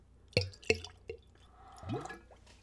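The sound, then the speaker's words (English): Spirit glugs from a big bottle into a clean Glencairn glass in a few quick, bubbly pulses, followed by a softer trickle and splash as the pour settles, fairly quiet. “A little bit of a glug in the big bottle.”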